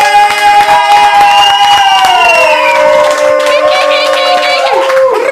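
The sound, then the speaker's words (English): Loud, steady applause for guest Slink Johnson, with dense clapping throughout, mixed with cheering and drawn-out whooping voices that rise and fall over the claps for the full five seconds. “Can we do it one more time for Acting Up for Slink Johnson? Give it up for Slink Johnson, yo.”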